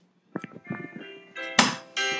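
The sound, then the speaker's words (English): A hand bell rings in uneven clangs, starting with quick light strikes and building to louder, bright metallic peals that sustain with a shimmering ring at the end. “Yeah, that bell sucks, but you know what?”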